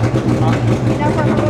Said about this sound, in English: the amateurs struggled to hear each other over the screaming car engines